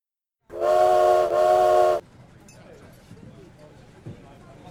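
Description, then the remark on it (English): A loud steam train whistle blows in two sustained, slightly separated blasts, bright and harmonic, then cuts off, leaving a low rumbling background with faint clatter. “This train is moving quickly, and every minute gets us closer to our final stop in Chicago, where all the passengers will be able to leave the train.”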